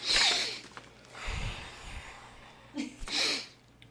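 Two or three loud, exaggerated breaths done as breathing exercises, a sharp hissing inhale and a huffing exhale, with a short pause before another forceful breath.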